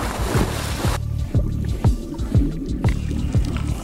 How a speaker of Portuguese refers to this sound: Cuidado! Os mergulhadores entram na água.